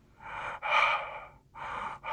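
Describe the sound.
A voice imitates exaggerated heavy breathing, like a waiter breathing directly into Donald Trump's mouth while serving him his order, loud huffs in a steady in-and-out rhythm, about four breathy bursts with brief pauses between, and no speech.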